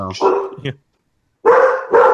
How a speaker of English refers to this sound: Bark, bark, bark, bark. Yeah. Okay. All right. It's loud. It's a barky day at my house tonight. God, the dogs.